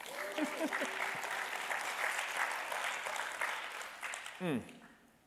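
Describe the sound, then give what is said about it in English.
A large audience claps steadily for several seconds, a dense, continuous wash of applause with a few voices calling out over it before it tapers off at the end. “If you're going to clap, just clap all the way.”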